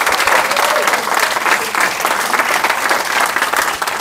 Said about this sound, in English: So, you know, let's give ourselves a round of applause for making the effort today.